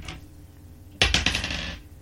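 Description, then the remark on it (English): A d10 die rolled for damage clatters across a hard tabletop in a quick burst of rattling bounces that settle after about a second, fairly loud against a quiet background. “And roll for damage.”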